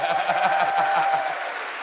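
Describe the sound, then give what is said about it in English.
A crowd applauds the speaker's father, who is in the crowd, with steady, dense clapping that holds at an even level for about two seconds, with voices calling out underneath and the clapping easing slightly at the end. “my dad, who's in the crowd right now, right dad there, for everybody can give him a big right hand.”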